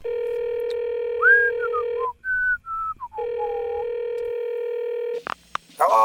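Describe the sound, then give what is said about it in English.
A steady electronic telephone tone hums, breaks for a few gliding whistle-like beeps, then resumes before ending in a burst of clicks and rustling, as if a handset is picked up, as a call is placed to the Pentagon. “If there were, they would have answered the phone.”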